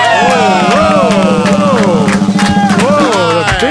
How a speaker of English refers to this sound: Whoa. Big clap to the end. Now, that there is a crowd pop, kid. Wow. Boom. That was amazing.